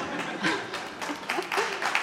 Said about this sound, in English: That's good. I'm not sure if they're applauding what you said or that you kept on time, but never mind.